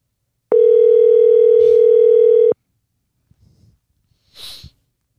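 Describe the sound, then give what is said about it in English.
A single loud, steady electronic telephone ring tone sounds for about two seconds as a phone call is placed to a guest, then gives way to near silence with faint rustling and a brief breathy sniff. “Let's give him a call.”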